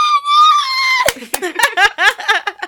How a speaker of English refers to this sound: Screech time.